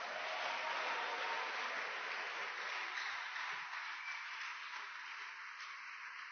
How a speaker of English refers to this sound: Why don't you give the Lord a wonderful clap offering?